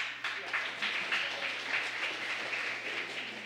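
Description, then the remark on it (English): A room full of people in a church claps steadily for a few seconds, a dense, even patter of many hands with no single claps standing out. “So introduce Luke. And so now you clap.”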